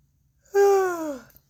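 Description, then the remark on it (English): A single drawn-out, fairly loud yawn, its voiced tone sliding slowly downward for about three-quarters of a second before trailing off into quiet. “I just yawned.”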